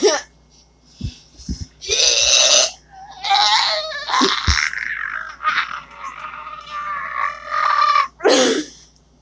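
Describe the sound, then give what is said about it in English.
A voice makes long, strained grunting and groaning noises in bursts, imitating someone straining on the toilet, with short pauses and a few clicks between the drawn-out efforts. “Sound like someone trying to take a shit.”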